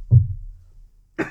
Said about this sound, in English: And I'm going to cough.